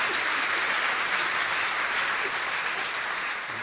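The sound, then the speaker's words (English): Sustained applause from a crowd for a group of girls, a dense, steady wash of clapping that holds at an even loudness throughout and tapers only slightly at the very end, with no voices standing out. “Let's give these girls a round of applause.”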